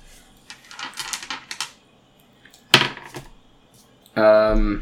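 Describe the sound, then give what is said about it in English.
Dice clatter and tumble across a table in a quick burst of rattling clicks as they are rolled during a player's turn in a game, followed by a sharper knock a moment later, then a brief sustained voiced sound at the end. “Slice. Dice, roll!”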